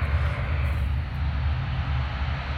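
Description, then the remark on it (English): Steady radio static hisses without a break, a dense wash of noise with a deep rumbling hum underneath, fairly loud and unchanging throughout, with no voices. “The static you can hear is more than just noise.”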